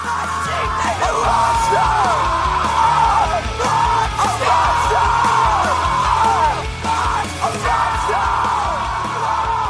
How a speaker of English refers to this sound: So there's this part where he's screaming about being a monster.